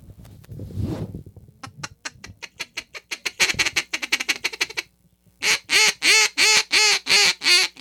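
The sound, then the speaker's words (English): A Duck Commander Pro Series double reed duck call blown in quick rhythmic bursts of quacks, starting with a rough rumble, then a fast run of short calls, a brief pause, and a louder series of evenly spaced quacks. “I'm fixing to blow this. It's a double reed Duck Commander that I got for Christmas.”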